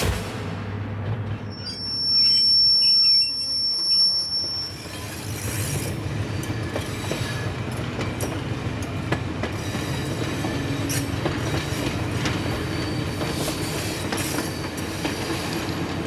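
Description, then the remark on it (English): A train gets going again after being halted: high metallic wheel squeals ring out over a low rumble for the first few seconds, then steady rolling and rhythmic clatter on the tracks, continuous, with no voices. “Less than an hour after Mark's body was found, the ambulance leaves, the police leave, and the train gets going again.”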